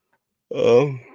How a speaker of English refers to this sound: Sorry about the yawn, gentlemen.